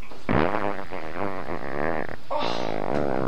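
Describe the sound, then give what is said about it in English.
Two long, loud, buzzy fart sounds play back to back from a video being watched, each a sustained rumbling blast with a short gap between them and no voices over them. “Just something about fart porn.”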